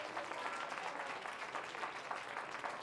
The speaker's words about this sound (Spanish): Den un aplauso de alabanza al Señor.